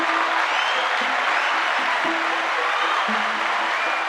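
Steady applause from an audience, a dense wash of clapping that holds at a constant loud level for about four seconds, with faint tonal hums underneath and no talking.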